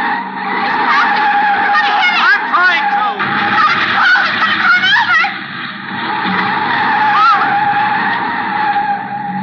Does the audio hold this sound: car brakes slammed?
yes